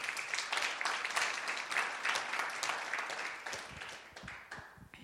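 A crowd applauds steadily as a speaker is invited up, a dense wash of many hands clapping at once, sustained for several seconds before gradually thinning out toward the end.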